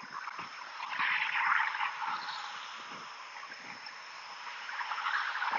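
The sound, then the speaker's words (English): About five cars passing by on a road: a steady, hissing roar of tire noise that swells as vehicles go by, rising around the start and again at the end, with no one talking. “Alright, that was like 5 cars.”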